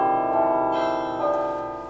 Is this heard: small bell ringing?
yes